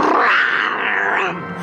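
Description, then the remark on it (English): A loud, sustained growl from the cartoon character Spider-Woman, turned part vampire and part werewolf, raspy and strained with a rising and falling pitch, lasting nearly two seconds with no other sounds. “Her growls are so adorable.”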